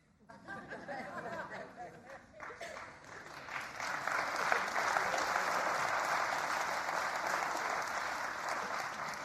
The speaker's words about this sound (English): I'm not sure if you're clapping because you like the series or whether you're just glad that I'm done.